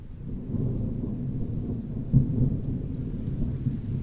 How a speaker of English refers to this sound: Rain as well.